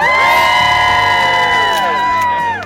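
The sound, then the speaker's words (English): An outdoor holiday crowd at the Today show in New York City cheers and whoops on a Monday morning for a few seconds, a loud, sustained swell of many high-pitched voices shouting together before tapering off at the end. “Nice holiday crowd out here on a Monday morning.”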